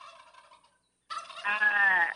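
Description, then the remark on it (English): A turkey gobbles in two bursts on Thanksgiving weekend, a shorter call followed by a brief pause and then a louder, rapid rattling gobble. “Get the bird. Calm the bird down.”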